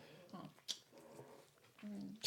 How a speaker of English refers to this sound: Just a little snorty dog. This little snorty dog.